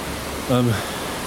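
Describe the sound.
Heavy rain pours down outside a window, heard by someone leaning out of it, as a steady, even hiss that never lets up, with a short burst of someone's voice rising briefly over it midway through.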